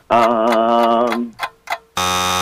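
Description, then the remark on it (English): A loud, harsh countdown buzzer in a cash quiz game blares for about a second, followed by two short beeps, then the buzzer sounds again and holds to the end. No one speaks. “It was a little after the buzzer, but the correct answer that we were looking for is radiation.”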